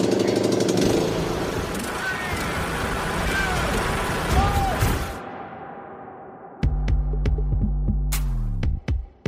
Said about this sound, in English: What is it, sir? You haven't ever seen a lawnmower being driven down the road before?